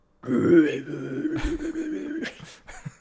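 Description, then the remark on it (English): A person imitates a deep, guttural death or black metal-style growl, a harsh, rasping vocal roar sustained for a couple of seconds, fairly loud, ending in a few rough breathy bursts. “Yeah, that's like, it's a guttural fucking belch.”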